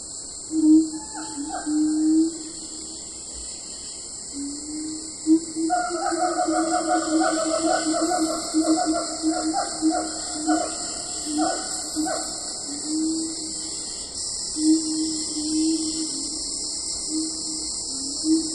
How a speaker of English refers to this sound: If you guess some type of a monkey or great ape, this is a Siamang gibbon. A gibbon is an arboreal creature that has long, dense black fur. They live in the forest of Indonesia, Thailand, Malaysia, and Sumatra.